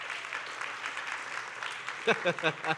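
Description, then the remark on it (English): Steady applause from an audience applauding themselves for having made it to summertime fills the first two seconds as a dense, crackling wash, then a voice starts talking over the fading clapping. “ladies and gentlemen, you can give yourselves a round of applause because you've officially made it.”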